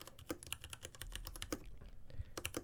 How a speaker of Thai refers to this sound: เป็น ASMR ฟังคีย์บอร์ดนะ ผมอยากจะบอกผมโดนตกไปหลายอันละ อันนี้สำหรับคนที่ชอบเล่น แมคานิก คีย์บอร์ดอยากฟังเสียง